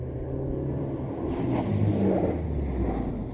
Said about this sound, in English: Outside, we heard a car pull up by the brothel.